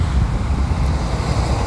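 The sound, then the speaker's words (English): Steady, loud wind blowing on a beach in Fort Lauderdale, South Florida, bending the palm trees, a continuous rumbling gust buffeting with a broad hiss of surf-like noise underneath and no voices. “just making an observation from the shores of South Florida, with the palm trees bending in the wind”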